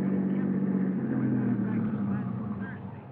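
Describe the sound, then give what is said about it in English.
A car engine drones steadily, a low rumbling hum with a constant pitch that eases slightly toward the end as the car rolls slowly, winding up the driveway to the DeSalle mansion overlooking the ocean at 7:30. “By 7:30, we were winding up the driveway to the DeSalle mansion overlooking the ocean.”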